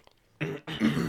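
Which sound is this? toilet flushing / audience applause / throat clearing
throat clearing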